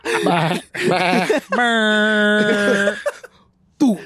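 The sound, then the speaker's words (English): A voice imitates a DJ air horn: two short warbling vocal bursts, then a loud, steady, nasal blast held for about a second and a half, sounding rather like a bleating goat. “That was supposed to be a Jamaican DJ horn, and you sounded like a goat just got kicked in the ass.”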